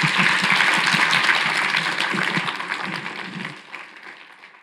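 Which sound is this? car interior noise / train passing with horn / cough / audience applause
audience applause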